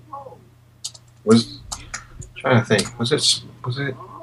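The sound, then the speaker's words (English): Computer keyboard typing in irregular bursts of quick clacking keystrokes as someone looks something up on Wiki, over a steady low electrical hum, with some faint voice-like sound in the background. “I hear you clickety clacking there on the keyboard.”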